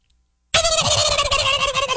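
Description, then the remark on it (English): A human voice imitating a turkey gobble, a loud rapid warbling burst that starts abruptly after a short silence and carries on steadily to the end. “This is a turkey.”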